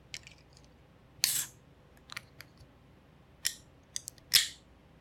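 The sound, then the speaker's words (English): A beer can, tapped seven times beforehand to keep it from fizzing over, cracks open with a few short, sharp hissing bursts and small metallic clicks, followed by faint fizzing, with no one talking. “Ooh, I hear it fizzing.”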